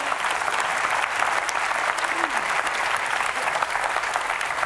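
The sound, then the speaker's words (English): A church audience breaks into sustained, steady applause for Jesus during a sermon, many hands clapping in a dense, even wash that holds at full strength for the whole stretch without fading. “Can we clap for Jesus?”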